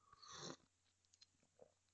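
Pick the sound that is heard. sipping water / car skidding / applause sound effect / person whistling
sipping water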